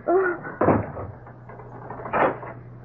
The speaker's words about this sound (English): Okay. Now get into that closet. Oh. Open the door. Inside. Oh.